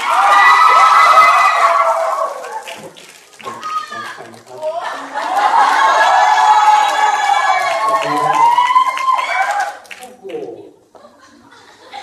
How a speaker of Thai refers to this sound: วันนี้เกิดอะไรขึ้น ทำไมเสียงกรี๊ดแปลกๆ